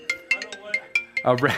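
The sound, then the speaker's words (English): A telephone rings in quick, repeated electronic chirps over a steady tonal hum, clear, before a voice starts talking at the very end. “Feels like we get fewer and fewer phone calls in our world, that no one actually picks up the phone to be able to hear a ring that you might answer, other than like a spam call.”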